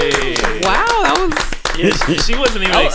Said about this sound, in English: clap it up